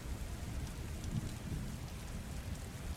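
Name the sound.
rain falling on cobblestones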